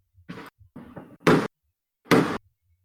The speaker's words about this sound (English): Thought someone was slamming on the car door outside. I assume that's fireworks.